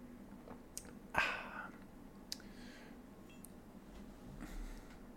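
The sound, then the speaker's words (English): A quiet sip of coffee from a mug with a brief airy slurp, followed by a few faint clicks and small mouth sounds against a soft background hum. No one speaks. “I'm going to take another sip of coffee.”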